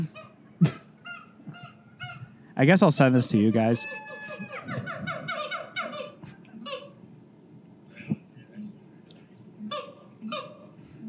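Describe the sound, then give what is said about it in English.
Monkey calls: a burst of loud, harsh, honking shrieks, then a string of high, quavering cries. A drunk man dealing with the monkey talks over and between them. “I'm going to play, I guess for the listener can hear the audio, of me drunk dealing with a monkey.”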